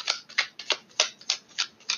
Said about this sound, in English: All right, shuffling the cards again.